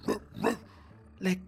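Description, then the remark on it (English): Three short, sharp dog-like barks, with the first two close together and the third after a brief pause, sounding like a human voice imitating a barking dog, moderately quiet and alone. “Then, when I reached our junction, the mad dog now came back with plenty of his mad dog friends.”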